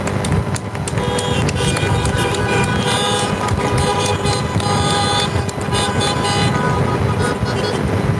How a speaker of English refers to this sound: Let's all acknowledge the love and support that you received from these people and give them a round of applause or honks.